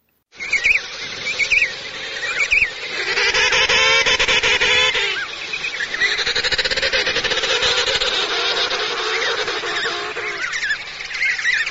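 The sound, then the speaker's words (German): Emperor penguins call loudly and continuously, a dense chorus of overlapping trumpeting, honking cries with warbling pitch shifts, swelling after a few seconds and carrying on throughout with no talking. “Das waren die Kaiserpinguine, die hier geschrauben haben.”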